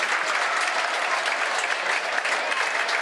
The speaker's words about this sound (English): Fantastic. Good applause to Steve Morrison around the ground there. And richly deserved, as we said, a number of times already.